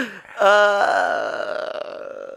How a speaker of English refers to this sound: I fart.